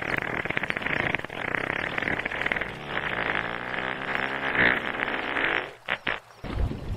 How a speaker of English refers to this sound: What happens if you light one of their farts? Actually, humpback whale farts are so powerful, you can light them underwater.